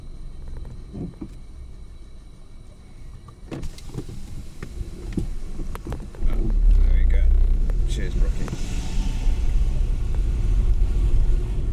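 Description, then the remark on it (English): A football team bus's engine rumbles low and steady, growing noticeably louder and heavier about halfway through, with clunks and indistinct voices around it as the players board. “The lads are all getting on the team bus now.”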